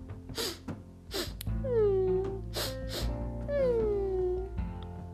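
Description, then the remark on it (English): A giraffe standing on the pavement sniffs sadly: sharp, breathy sniffs alternate with two drawn-out, descending whimpers, making a sad, moaning pattern of snuffles and tearful cries that repeats twice over a few seconds. “On the pavement stood a giraffe who was sniffing sadly.”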